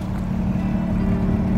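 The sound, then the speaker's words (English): A race car engine at a Miami speedway drones steadily at a constant pitch, kept at about 5,500 RPM, loud, with a deep rumbling hum and no talking over it. “He leaves his Honda Accord in the parking lot and climbs back into a race car.”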